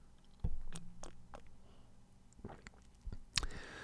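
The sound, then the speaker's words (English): Someone sipping a steaming hot cup of black coffee early in the morning: a few soft, wet mouth clicks and lip smacks, then a brief airy slurp near the end, all quiet with no talking. “Let me just take a sip, shall I?”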